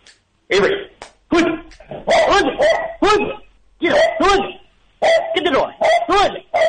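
A tricolored Welsh Corgi named Avery, in Portland, barks repeatedly, loud sharp yaps coming in quick irregular bursts, about eight or nine in a row with brief pauses between.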